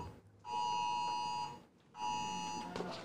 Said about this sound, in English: What the hell is that? Amber Alert.